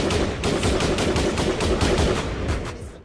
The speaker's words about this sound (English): Don't be alarmed by the gunshots. It's all good.